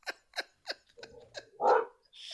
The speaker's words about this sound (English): Oh, I got a dog. Hey, chill out.